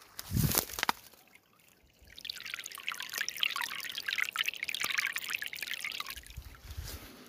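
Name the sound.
babbling brook water trickling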